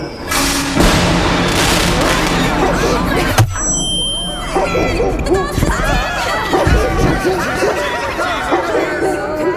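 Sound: fireworks exploding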